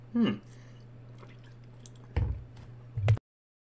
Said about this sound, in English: Well, it would be working if I hadn't just choked myself on water.